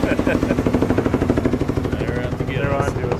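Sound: helicopter approaching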